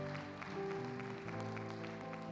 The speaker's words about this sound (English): Come on, let's give Jesus a hand clap of praise for that salvation today. Yeah. That never gets old.